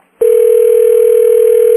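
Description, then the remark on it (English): A steady telephone dial tone, heard while placing a three-way call to a lawn service, starts abruptly after a brief silence and holds at an even, loud level, a continuous hum with no talking over it. “What I'm going to do is I'm going to three-way call him.”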